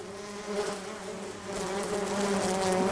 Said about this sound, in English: No, I'm outside, standing by the bees.